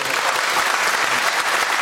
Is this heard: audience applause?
yes